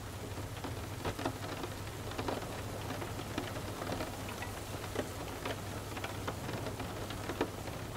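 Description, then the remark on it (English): Steady rain with scattered drops tapping sharply against a window, over a constant low hum. The patter is irregular and moderately loud, with no voices. “As you lay there, quiet and still, observing the sounds around you, feel the energy and healing properties of each raindrop tapping at your window.”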